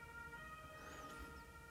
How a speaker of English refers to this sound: Got an ambulance outside my door. Looks like they're stuck.